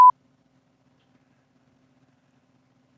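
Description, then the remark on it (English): A short, sharp censor bleep over a spoken name, a steady high-pitched tone lasting only a split second at the very start, followed by near silence with no voices. “All right, I'm going to ask you this one, and then I'm going to have to beep out the name tomorrow.”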